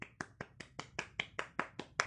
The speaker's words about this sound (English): Give a clap to me.